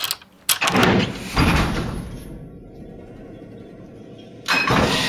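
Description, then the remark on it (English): A key turns in a heavy lock, setting off loud mechanical clunks followed by a low, steady rumbling hum, then another sharp clunk near the end. No voices. “if you want me to hear, you're going to need to speak louder than the sound of this turning key.”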